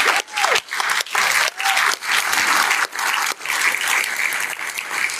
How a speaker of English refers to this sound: I want to take a moment of silence to recognize them all. Yeah, let's clap too.